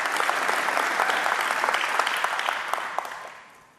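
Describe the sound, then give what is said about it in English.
A crowd claps steadily in dense, crackling applause that holds at a fairly loud level for a few seconds, then tapers off toward the end. No one speaks over it. “And how many agree with me that women who give birth to children should be applauded?”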